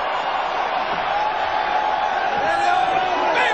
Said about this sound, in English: This crowd is going crazy.